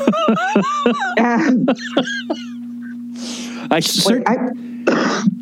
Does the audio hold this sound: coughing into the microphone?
yes